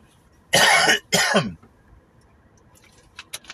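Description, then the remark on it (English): Two loud, harsh coughs, one right after the other, followed by a few faint clicks and rustles in otherwise quiet surroundings. “The coughing will hopefully subside here soon.”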